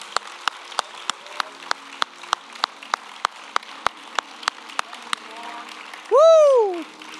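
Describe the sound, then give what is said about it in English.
A standing crowd claps hands to the Lord Jesus Christ in the morning, in a steady, even beat, roughly three claps per second for about five seconds. The clapping fades, and then a single voice calls out loudly. “Stand with me this morning. Let's clap our hands to the Lord Jesus Christ.”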